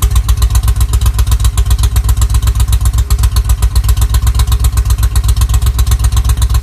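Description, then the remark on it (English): A truck engine idles through worn mufflers whose rusty exhaust baffles have blown out, a loud, steady low burble of rapid exhaust pulses with a rattly edge, continuous throughout with no voices. “I should probably replace the silencers, but I kind of like the note.”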